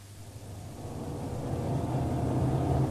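A police car's engine hums and rumbles steadily as it drives along, the low drone swelling gradually louder over a few seconds, with no voices present.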